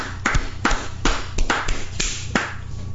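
Hands clap sharply about eight times in a steady, moderately quick rhythm, each clap a crisp, bright smack. No one speaks.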